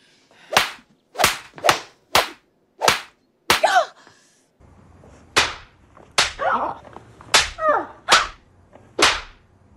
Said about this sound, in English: Sometimes you have to slap them in the face just to get their attention.